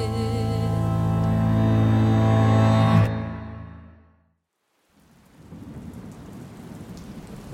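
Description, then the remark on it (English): A sustained musical chord fades into a brief silence, then steady rain with thunder begins, a dense, even hiss of falling drops with a low rumbling undertone, continuing to the end. “On the first night, as the rain fell, three young men appeared at the door of the church, rapping gently, seeking spiritual guidance.”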